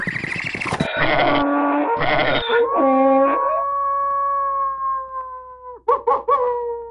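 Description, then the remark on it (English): Sheep bleat loudly in a barnyard stable, several wavering cries in quick succession, then one long drawn-out bleat, followed by a couple of short, shaky calls at the end. “A barnyard in here.”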